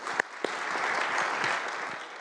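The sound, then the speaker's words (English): An audience claps steadily for a panel, a dense, even wash of applause with a few sharper individual claps standing out near the start, continuing throughout without any voices. “Please, round of applause for the panel.”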